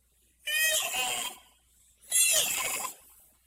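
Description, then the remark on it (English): A voice imitates a donkey's bray, with two loud, harsh, drawn-out calls about a second each, separated by a short pause, with no other sound. “It's ugly. And it makes us a nasty sound.”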